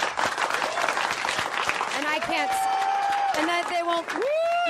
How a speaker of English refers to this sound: Let's keep the applause going. This isn't radio station applause. This is real applause. It doesn't die down after 2 seconds.